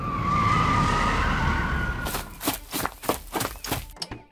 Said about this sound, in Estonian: Kahe reisijaga takso pidi järsult pidurdama, kui juht märkas keset maanteed relvaga vehkivat meest, kes kandis seljas miilitsa vormi.